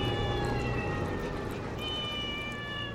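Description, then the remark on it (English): A cat lets out a long, drawn-out meow that wavers and rises in pitch, sustained for a few seconds, with a faint low background rumble beneath it. “It was the cats.”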